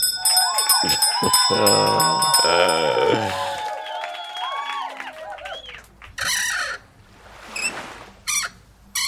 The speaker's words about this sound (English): Oh my God. It was a squeaky cabinet door. Or there's a porpoise in that cabinet.